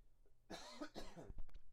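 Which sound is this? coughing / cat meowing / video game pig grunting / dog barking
coughing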